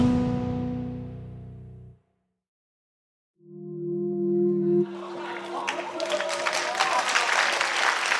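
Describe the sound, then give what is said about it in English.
After a brief musical tone and a short pause, a sustained electronic tone sounds, then a crowd of traders on a stock exchange floor breaks into loud, dense clapping that continues steadily to the end, as Japanese stocks and the Nikkei surge to an all-time high. “Traders clapping as Japanese stocks surge to an all-time high.”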